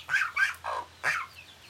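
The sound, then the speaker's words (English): Several short, nasal chicken clucks from a group of at least 25 chickens come in quick, uneven bursts, with a low steady hum running underneath. “Okay, those were the chickens.”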